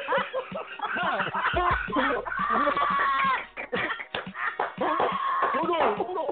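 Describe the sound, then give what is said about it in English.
Birds chirping and clucking, steady throughout, mixed in with people talking over them. “See, and then you hear the birds come out like the birds chirping.”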